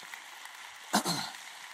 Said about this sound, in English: So let's show the Lord and those who served a hand clap of praise.